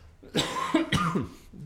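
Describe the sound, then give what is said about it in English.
A couple of throaty coughs in quick succession, fairly loud and raspy, with no talking over them. “I should have a cough button right here, huh?”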